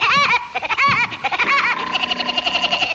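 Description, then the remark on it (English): Woody Woodpecker's cartoon laugh, pre-recorded by Mel: high and nasal, three swooping whoops, then a rapid string of short staccato giggles that imitate a woodpecker's pecking. Loud, with no talking. “Those few short giggles at the end are totally intentional. They're actually meant to sound like a woodpecker pecking.”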